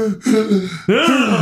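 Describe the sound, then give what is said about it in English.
A person yawns loudly, an asthma yawn: a breathy intake followed by a drawn-out, voiced groan that rises and falls over about a second and a half. “Yeah, that was I was actively yawning. That was an asthma yawn.”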